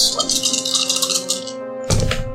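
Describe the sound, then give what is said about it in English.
Five dice rattle and clatter for about a second and a half in a rapid, bright, clicking burst, then a brief pause before a final louder tumble of clacks. “Five dice, you need three successes.”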